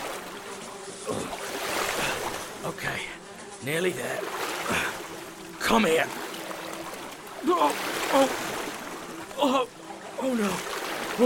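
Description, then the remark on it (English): Steady, continuous sloshing and splashing of someone wading through water, with a man's voice speaking a few short phrases over the churning water. “It's so much worse once you're actually in the water.”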